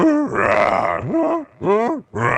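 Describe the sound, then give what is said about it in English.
A man's voice imitates a lion and a giraffe mating with a run of loud, strained grunts and groans, rising and falling in pitch, in four bursts separated by brief pauses. “Did you hear the lion and the giraffe getting it on? Yeah, it was like this.”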